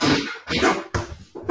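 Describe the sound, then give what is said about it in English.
A dog rummages in a bin, making four rough, rustling bursts in quick succession, fairly loud, with no talking over it. “What is your dog doing? Sorry, there's something in the bin. Can you get the dog away?”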